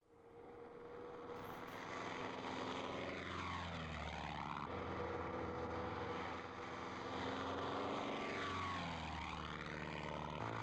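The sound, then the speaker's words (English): A propeller airplane engine drones loudly and steadily, its pitch dipping and rising twice as the plane sweeps past. No voices are heard. “He has a plane.”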